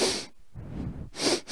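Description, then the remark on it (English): A person mimics Joe Biden's sniffing: two sharp, airy inhales through the nose separated by a softer, breathy exhale, with no talking. “No, he just prefers sniffs.”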